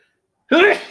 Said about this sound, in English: Sneeze coming up.